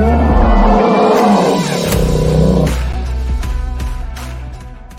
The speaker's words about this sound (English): I love hearing that roar every week.